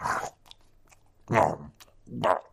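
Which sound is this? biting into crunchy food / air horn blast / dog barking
biting into crunchy food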